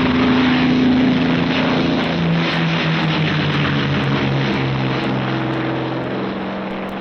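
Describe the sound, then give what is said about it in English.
The engines of General Moore's P-51 fighter planes drone and rumble steadily out on the line, a loud continuous roar with shifting low harmonic tones as they idle and warm up before a long-range fighter flight, no voices. “Out on the line, General Moore's P-51s are warming up for the longest fighter flight on record.”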